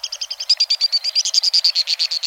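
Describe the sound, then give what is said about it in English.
White-throated swift (Aeronautes saxatalis) calls in a canyon: a rapid, even trill of shrill, high-pitched notes, roughly twenty in quick succession, loud and steady with no voices. “Flying at tremendous speed, the white-throated swift is indeed swift, among the fastest of all birds.”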